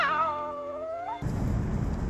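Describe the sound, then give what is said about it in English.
A single drawn-out cat meow, clear, sliding downward in pitch for about a second before abruptly giving way to a loud, rough burst of noise. “In my world, you wouldn't say, meow.”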